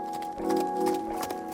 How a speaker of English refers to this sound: I'm riding a horse with one of my friends. My other two friends are on a different horse,